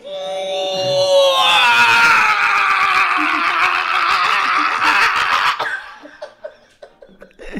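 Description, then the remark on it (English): A man, performing a comedy character called Scream, belts out one long, loud, strained scream that rises in pitch and holds for several seconds, then breaks off into scattered breathy chuckles and quieter sounds. “Did I do a character name Scream and just do that?”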